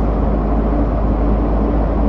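Steady low rumble of road and engine noise from inside a moving car, loud and continuous with no voices, a constant droning hum filling the whole stretch.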